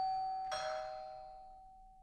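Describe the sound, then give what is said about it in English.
A doorbell chimes with two tones: a steady ringing note, then a brighter second strike that rings out and slowly fades over the next second and a half. No voices. “I will answer the door and join you in a moment.”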